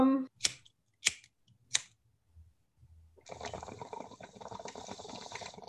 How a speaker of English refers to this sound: Give me one sec. I'm gonna grab water in my bong.